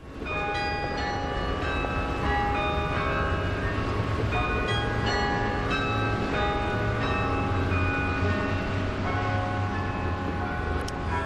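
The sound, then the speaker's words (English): Carillon bells of the Peace Tower ring out the Christmas carol "Mourning Dove", composed by Pierre Massey, around noon on a cold, rainy day. Many overlapping tones sound and sustain at a steady, fairly loud level, with a low rumble underneath and no voices. “Now, if you were passing by the Peace Tower at around noon hour today, you would have heard this Christmas carol.”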